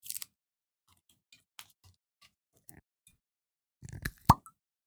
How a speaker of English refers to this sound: How's that? That's a friendly sound. Pouring a responsible amount of whiskey.